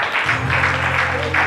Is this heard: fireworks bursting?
no